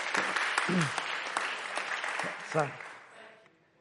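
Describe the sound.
An audience breaks into a round of applause, dense overlapping clapping that holds steady before tapering off, with a few voices calling out over it.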